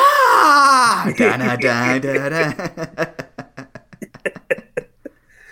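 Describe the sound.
A voice imitates Triple H's WrestleMania scream: a loud, strained, high-pitched yell that drops and breaks into a rapid series of choppy, sob-like bursts before trailing off.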